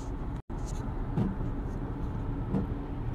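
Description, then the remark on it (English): Car windshield wipers sweep faintly in the rain in Texas, two soft strokes about a second and a half apart over a steady, loud wash of rain and engine rumble, with a brief cut near the start. “Yes, as you can tell from the sound of our windshield wipers, it is raining here in Texas.”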